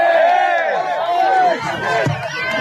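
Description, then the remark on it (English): A group of soldiers cheering and shouting together at a rabbi's speech, a loud, continuous mass of overlapping voices whose pitches swoop up and down for a few seconds. “So the rabbi said to cheers from soldiers, this land is ours.”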